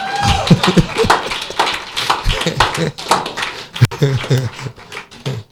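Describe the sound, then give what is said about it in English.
A crowd claps together in a dense, steady patter of overlapping hand claps, loud, with voices calling out beneath the applause, clapping for the media department. “Everybody clap for the media department.”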